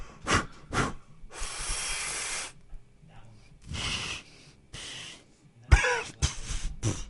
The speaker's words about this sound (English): Oh, it was going good until you coughed.